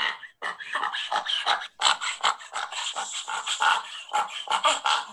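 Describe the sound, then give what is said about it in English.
A dog's harsh, honking cough from a collapsing trachea, repeating in rapid, rasping bursts with short gasps between them, loud and continuous for several seconds with no talking. “But it usually starts with this honking noise.”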